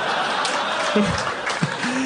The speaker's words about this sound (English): Sorry. Some like spine surgeon just booed you. Chiropractor, boo.